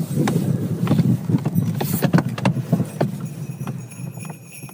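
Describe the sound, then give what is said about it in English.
Sleigh bells on a single horse pulling an open sleigh through snowy fields in Norway jingle in irregular bursts over the steady clip-clop of hooves and a low rumbling drone, moderately loud throughout, with no talking. “You hear the horse bells?”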